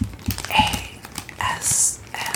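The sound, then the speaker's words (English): Soft crinkly crumpling sounds, a few quick rustling bursts with brief high-pitched squeaks, fairly quiet, with faint breathy noise and low thumps mixed in. “ASMR. Yeah, you feel that little crumple.”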